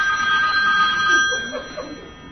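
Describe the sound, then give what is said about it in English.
A phone rings with a steady, high electronic tone for about a second and a half, then cuts off as a faint voice murmurs underneath. “Which is why I don't turn my phone off.”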